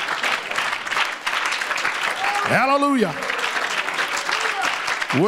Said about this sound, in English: And the church shouted, Amen. Amen. Give the Lord a real good hand clap of praise.